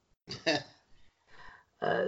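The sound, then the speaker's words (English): Several rough throat-clearing bursts in an uneven rhythm, a strong double rasp followed by a quieter pause and two more gravelly grunts, the last loud and sustained, with no talking. “And let me tell you why after I clear my throat.”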